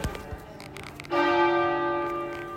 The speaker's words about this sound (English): Hold on, this church bell is ringing. Dun, dun, dun, dun.